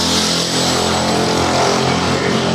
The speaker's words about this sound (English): Motorbike.